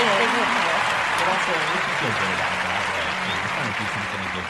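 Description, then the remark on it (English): A steady wash of crowd applause sound effect, dense and loud, with many hands clapping continuously; voices talk underneath it throughout. “it's clapping.”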